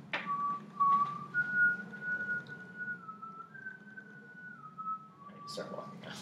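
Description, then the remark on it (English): Someone whistles a slow, mournful dirge with long, gently sliding held notes, steady, over a low murmur of background voices. “And while we do this, I whistle a dirge.”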